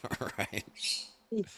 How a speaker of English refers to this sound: My bird.